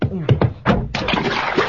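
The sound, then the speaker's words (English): A short vocal sound opens, then a steady, broad rush of water pours and splashes continuously into a bathtub, poured over a man bathing in it, fairly loud and unbroken for the last second or so. “Hey, so don't pour that water on me now.”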